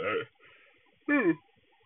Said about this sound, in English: Excuse me. Sorry. Excuse me. I'm yawning. Excuse me.